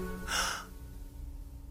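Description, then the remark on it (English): A single sharp, breathy gasp lasting under half a second, followed by quiet low background noise. “Gasp.”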